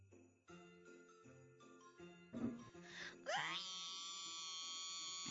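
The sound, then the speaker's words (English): A voice performs a scream on request, starting with short wavering wails that climb into a long, loud, sustained high-pitched shriek held to the end. “Can you scream for me? I need something to wake me up at 3 in the morning.”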